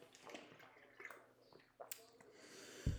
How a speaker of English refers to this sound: I'm going to take a quick swig of water.